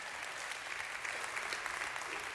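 A room full of people claps steadily, a dense crackle of many hands sustained at even loudness throughout, with no voices rising above it.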